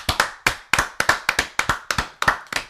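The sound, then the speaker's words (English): A small burst of clapping for someone's 23rd birthday on Halloween: crisp, sharp hand claps in a quick, fairly steady rhythm, roughly a dozen over a few seconds, loud and alone with no talking. “Everyone clap it up for him.”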